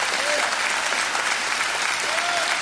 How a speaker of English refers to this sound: Give him a clap offering in this house.